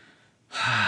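A quick, loud breath drawn in, rising suddenly out of near silence into a rushing, airy inhale that fills the second half.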